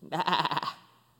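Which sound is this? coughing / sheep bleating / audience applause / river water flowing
sheep bleating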